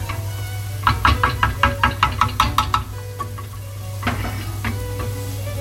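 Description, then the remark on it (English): A wooden spoon knocks and scrapes rhythmically against a metal tray of roast vegetables as they are stirred, about ten quick taps, followed by a duller clatter as the tray is put back into the oven, over a steady low hum. “I'm just stirring them up. I'm gonna put them back in the oven just while I'm frying up the onion and the spinach.”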